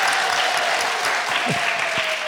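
Steady audience applause, a dense wash of many hands clapping at an even loudness throughout, with no one speaking over it.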